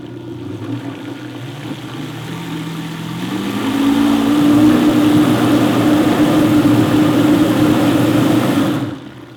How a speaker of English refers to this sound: All right, and now this time, I'm not blending on high. I'm just gonna go on variable speed 4-ish, just to work the yogurt in without it getting frothy.